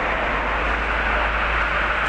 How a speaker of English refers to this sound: Let's train on the other side, so wait for the other train to show up. But I'll pretty much just kind of shut up, and we'll listen as to how we'll listen as to the train comes in, and we'll hop on.